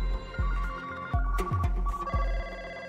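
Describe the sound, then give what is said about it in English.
A telephone rings insistently in repeated bursts, loud, over a steady low thumping rhythm like a background music beat. No one speaks. “Kapoor began receiving threatening phone calls from influential lawyers”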